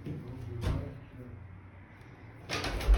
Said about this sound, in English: That's where he is, and that's how I'm shutting the door. It's not in his face, is it?